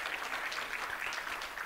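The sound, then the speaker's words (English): A church audience applauds its praise team steadily after their music, many hands clapping in a dense, even wash of sound with no single claps standing out and no voices on top. “Hey, before I forget, just give your praise team a nice big clap.”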